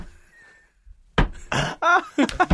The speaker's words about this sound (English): The knock on the door.